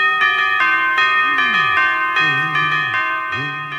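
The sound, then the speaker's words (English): Animated anthropomorphic church bells at Notre Dame Cathedral, striking themselves on the head with mallets, ring out the Carol of the Bells: about eight bright, ringing strikes in steady succession with lingering overtones, while low swooping vocal-like tones slide underneath. “But let's move on to our next segment, the Carol of the Bells, performed at Notre Dame Cathedral by the Paris Bell Harmonic, which is just a bunch of anthropomorphic church bells who hit themselves on the head with mallets to make their notes.”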